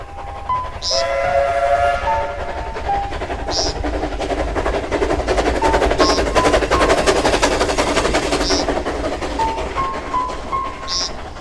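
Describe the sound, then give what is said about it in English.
A passenger train rumbles steadily along the rails, with a sharp rhythmic clack about every two and a half seconds and a faint whistle sounding briefly at intervals, fairly loud throughout. “Left for Florida on the midday train.”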